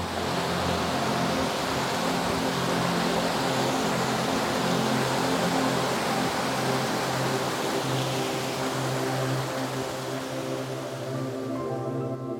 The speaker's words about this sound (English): Water. Flowing water brings us to silence. We stand there, listening. Water has a lot to say.